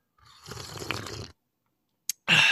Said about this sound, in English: Had to get that sip of coffee.